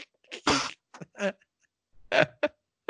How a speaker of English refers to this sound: Like he's crying from coughing, not like crying from pain. Just he's coughed so much, he's starting to tear up and crying.